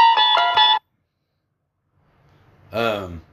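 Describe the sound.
A mobile phone ringtone plays the Twilight Zone theme, a short, bright electronic melody of steady tones for under a second, and cuts off. After a pause, a brief voiced sound follows.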